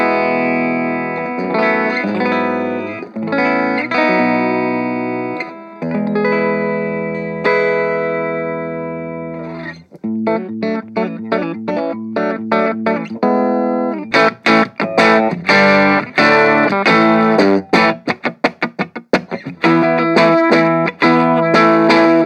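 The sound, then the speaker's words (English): Clean electric guitar through a small Orange amplifier on its clean sound at about an 11 o'clock level: ringing sustained chords first, then choppy rhythmic strumming, building into quicker picked notes with sharp, bright attacks. No one speaks. “So we'll go through the clean sounds first, keeping it a nice kind of 11 o'clock kind of level, and play through.”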